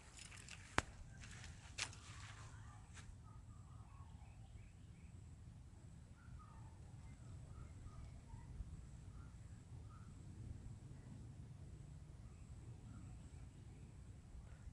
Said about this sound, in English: Can hear dogs, can hear the wind, can hear the birds. Ah, oh, I just love nature.